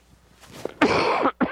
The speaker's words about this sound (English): First cough. Anybody else need to cough?